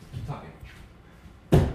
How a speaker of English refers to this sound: Hold on. I'm going to kick my fridge so it stops making the noise. Yeah, kick it.